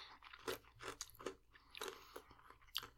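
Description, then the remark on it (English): Crunchy chewing of a pretzel chocolate bar with peanut butter and peanuts, with about six sharp, brittle crunches in an uneven rhythm and no talking. “A lot of crunch, a lot of saltiness.”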